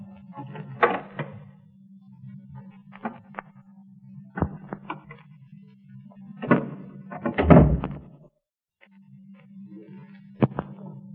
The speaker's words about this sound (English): Shh. Somebody's at the door. He's trying the knob.